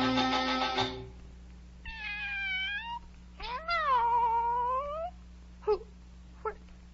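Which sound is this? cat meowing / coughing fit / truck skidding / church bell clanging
cat meowing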